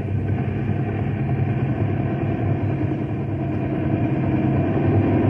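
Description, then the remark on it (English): A helicopter drones loudly and without pause, its deep rotor-and-engine roar churning with a rough, fluttering texture as storm wind buffets it. No voices are heard. “The wind's sure tossing that copter around.”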